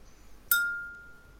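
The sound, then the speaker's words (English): A single bright ping of a glass being struck, sharp at onset and then ringing out in a clear, high sustained tone that slowly fades. No one speaks. “I don't know why I pinged my glass then.”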